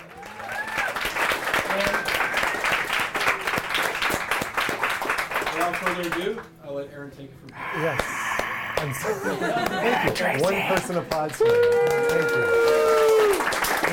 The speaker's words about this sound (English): I don't need your pity applause.